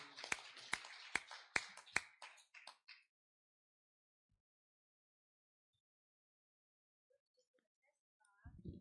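An audience gives the Lord a hand clap as a singer comes up to sing, clapping along in a steady, even beat for about three seconds, sharp loud claps standing out over a dense wash of hands, before it drops to near silence with faint stray sounds.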